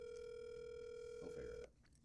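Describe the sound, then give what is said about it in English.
A phone line's ringback tone on an outgoing call to a friend hums steadily for about a second and a half, then cuts off abruptly, leaving faint background noise. No one picks up and no voices are heard. “Fucking one time, Emily doesn't answer.”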